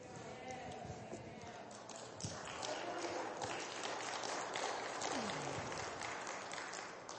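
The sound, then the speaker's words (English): A church audience claps during a sermon in a soft, uneven patter of many overlapping handclaps that keeps going for several seconds, with faint voices mixed in underneath. “I'm doing better preaching than you are clapping.”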